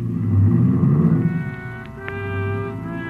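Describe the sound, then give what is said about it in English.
A car engine rumbles loudly, then revs into a steady, rising whine as the car is driven off fast, with no voices present. “he climbed in his car and drove off fast.”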